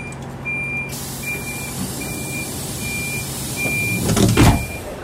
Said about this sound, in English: We're here. Press the button to open the doors.